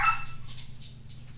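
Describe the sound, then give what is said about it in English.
A dog lets out a sharp bark, followed by a few softer, quick yips spaced about a third of a second apart, over a low steady hum. “Oh, special guest DOG on the podcast.”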